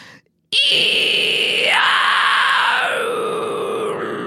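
A single loud, harsh vocal fry scream, demonstrated as a harsh vocal technique, held for nearly four seconds: a raspy, hissing, breathy shriek with no clear pitch, its vowel shifting partway through, after a brief moment of silence.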